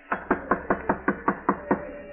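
Someone raps on a door nine times in a quick, steady series, each knock a sharp, hollow thud, fairly loud and alone with no voices.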